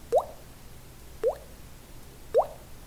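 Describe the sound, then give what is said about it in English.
Three evenly spaced water drips, about a second apart, plop into a bucket in a movie theater with bright, rising little plinks over a quiet background. No one speaks. “Right into the bucket.”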